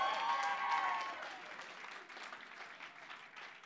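An audience claps in a dense, steady burst of applause, loudest at the start with some voices mixed in, then continuing slightly softer until the end.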